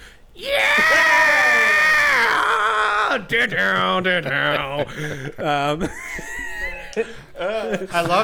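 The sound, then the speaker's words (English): A man's voice imitates an intro scream, a long, strained scream lasting a few seconds, then shifts into loud, wavering sung melody with choppy, pitch-bending phrases as he imitates the song, with no instruments. “I love that he gets both the scream and the song wrong. And the guitar riff.”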